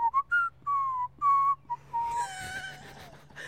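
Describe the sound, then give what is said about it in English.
A person sitting outdoors whistles a clear, mid-pitched tune of several short gliding notes with brief pauses, ending in a longer falling note over a soft, breathy hiss. “Isn't that the song you were whistling?”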